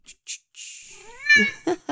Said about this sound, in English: Hello, little baby. Yes, it's good to see you. Meow, meow, meow, meow. Yes, yes, I know, you're hungry.